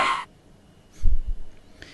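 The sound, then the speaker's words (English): A teleport sound effect from the game Destiny: a bright, crackling burst of noise opens, then after a short gap come two deep, booming thumps that fade out with a faint shimmer. “That was a teleport, apparently.”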